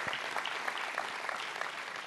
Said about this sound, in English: Y'all give them a hand clap of praise for all that they do behind the scenes.